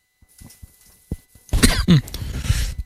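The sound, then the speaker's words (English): A few faint clicks and breaths lead into a loud cough burst from a person speaking with a cough drop, followed by a second harsh cough and a raspy throaty tail, with no talking. “Excuse me. Even with the cough drop.”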